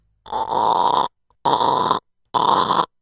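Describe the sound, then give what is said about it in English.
A door squeaks three times in a row, each a loud, creaky, drawn-out groan lasting under a second, separated by short silent gaps, with no voices. “You want to hear the door squeak?”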